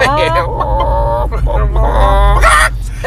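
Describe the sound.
A person's voice imitates a chicken's clucking, with a run of loud, squawky bursts over a steady low hum.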